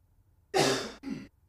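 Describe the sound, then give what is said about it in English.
A single muffled cough, made away from the microphone, in two quick bursts: a longer rough exhalation followed by a shorter one, with no talking around it. “Sorry if y'all heard that. I tried to cough away from the mic.”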